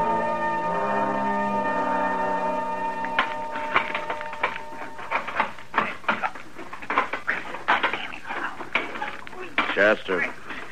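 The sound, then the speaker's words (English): A stick of wood bangs repeatedly on a stove, sharp irregular knocks and clatters following a short ringing metallic tone, with a faint voice murmuring beneath. “You're going to wreck it banging it on the stove that way.”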